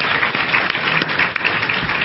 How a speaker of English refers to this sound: Give him a round of applause for being the first one to speak tonight.